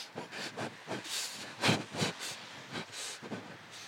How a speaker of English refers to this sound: And then I saw a little model train, so I got on it.